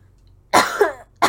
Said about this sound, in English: I'm great. I'm just choking on water.